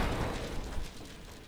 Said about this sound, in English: I feel like there's a better explosion noise. Oh, explosion sound effect realistic.